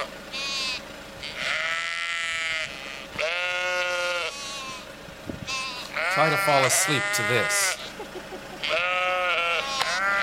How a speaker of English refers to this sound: The shepherds were guarding their flocks out in the open countryside, and I think we have the sound of sheep in the countryside.